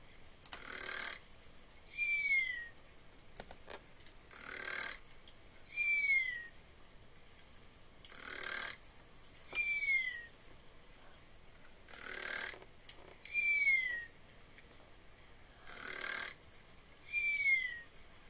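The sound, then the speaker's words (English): A cartoonish video game snoring effect loops steadily as the player's character sleeps, with about five cycles of a rough, breathy snore, each followed by a short, high descending whistle. It's clear and alone, with no talking. “Admire the beautiful noise of snoring.”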